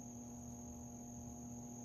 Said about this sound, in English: The mosquito.